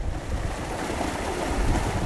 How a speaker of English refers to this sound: I was only able to approach from the Watsonville side, and the river was just hundreds of feet wide. It's brown. It's just gushing. There's like trees halfway underwater in the middle of it and debris kind of strewn along the banks.